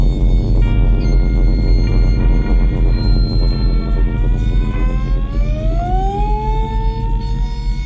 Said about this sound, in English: You hear the drone is coming back. I had it saved for later.